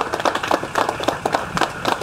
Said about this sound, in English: He gets a round of applause on account of being ambulatory today.